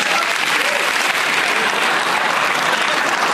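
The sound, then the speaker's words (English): A crowd applauds steadily in answer to being asked to clap if they have never seen the film Meatballs, a dense, loud wash of clapping hands that holds at an even level throughout with no voices standing out. “Applaud if you've never seen Meatballs.”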